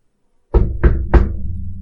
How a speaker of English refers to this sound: Wait, is he like knocking or snapping for me to leave? He knocks on the side of the door, and there is a moment, and the door kind of hisses open.